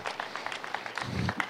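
A brief burst of scattered applause from a small group, quick overlapping claps at moderate volume with a low rumble rising near the end, as an audience claps for a woman introduced for an interview.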